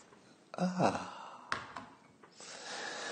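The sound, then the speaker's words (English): An audible sip of coffee with a slurping draw, a soft clink, then a long satisfied breathy exhale, heard alone without talking. “Happens now. Sip.”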